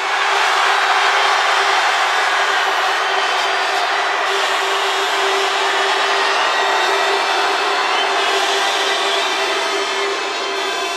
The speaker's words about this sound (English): That's good. That's good. Remember that you have to keep shouting for the whole 10 seconds if you want your crew to win that round. But that definitely worked. We hear you.